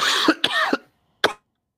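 coughing

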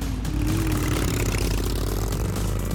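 motorcycle engines revving

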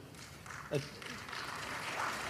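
mild audience applause

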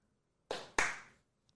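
hand clapping

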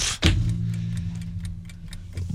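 countdown clock ticking

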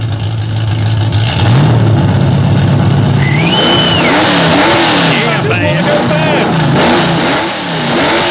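car engine revving

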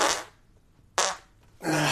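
small fart

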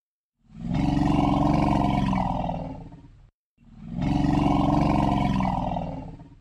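elephant low-frequency rumble

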